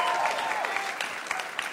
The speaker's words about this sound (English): I am transsexual. You guys are cool with that? SF people? Cheering.